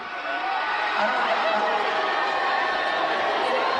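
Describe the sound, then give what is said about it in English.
A dense, steady roar of crowd noise with high-pitched screaming and shouting blended together as a performer is on stage, sustained at an even loudness throughout without a break. “He's on stage, a lot of screaming, as you can hear.”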